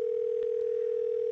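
A steady, unbroken telephone ringback tone hums at a single pitch on a phone line while an outgoing call rings, holding level without pauses, clear and moderately loud with no voices.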